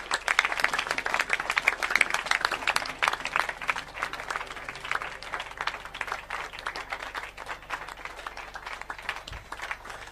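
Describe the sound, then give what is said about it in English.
A crowd claps hands unto Jesus in a dense, sustained burst of applause, many overlapping sharp claps forming a continuous bright patter that stays steady for the full ten seconds without any talking. “Well, you can clap your hands unto Jesus.”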